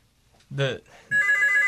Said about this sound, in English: We got a phone call.